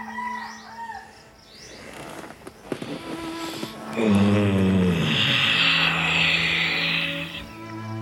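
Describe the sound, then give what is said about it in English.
A rooster lets out a loud, drawn-out crow before sunrise that rises and holds before trailing off, with faint bird chirps and some rustling before it. “Seemingly earlier than yesterday, and probably a few breaths earlier than the day before, the rooster crows.”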